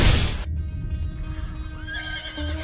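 A horse neighs loudly, a shrill whinny with rising and falling tones that trails off into snorting and rustling noise, with no one speaking.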